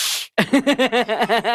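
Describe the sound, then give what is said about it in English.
A person imitates an angry cat saying no, with a short, sharp, loud hiss, then breaks into a quick run of rhythmic voiced bursts, about eight in a row. “If I could learn no in cat speak. Do you want to hear what it sounds like?”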